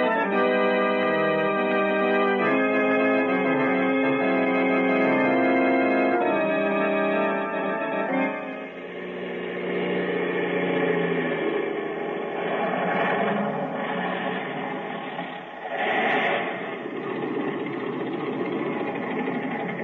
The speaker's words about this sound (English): Here come some men now. They heard the plane landing.